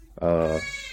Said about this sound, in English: So if you hear the baby crying, that's what it is.